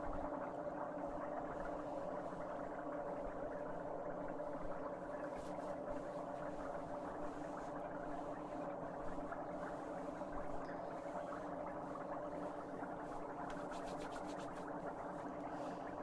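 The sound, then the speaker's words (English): Foot spa water bubbles and churns steadily, with a constant motorized hum underneath and a low gurgling texture that holds at the same level throughout, no voices present. “Okay, I'm going to turn off the bubbles.”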